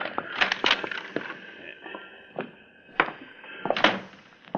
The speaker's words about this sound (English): Get the door unlocked.